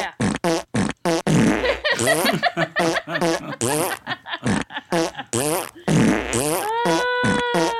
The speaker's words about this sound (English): Sorry. That was my fart remix. The 12-inch single of my fart sound effect right there. Thank you very much. It was like you were playing like you have whoopee cushions put together like bagpipes.